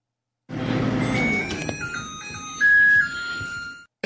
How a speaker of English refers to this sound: All right, now this is my friend's obnoxious yet cheerful microwave.